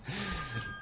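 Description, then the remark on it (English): A telephone rings in a brief, steady burst, its bright electronic tone sounding against a low background hum, with no one speaking. “And I'm going to answer that phone call off the air.”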